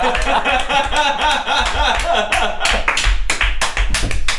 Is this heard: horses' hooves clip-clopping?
no